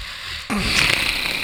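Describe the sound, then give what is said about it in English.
A voice imitates loud, heavy nasal breathing, mimicking the awake breathing of a man sitting behind the speaker at a theatre show: after a brief quiet moment, a single long, rough, airy exhale through the nose rushes in and sustains to the end. “that was his awake breathing, which was like...”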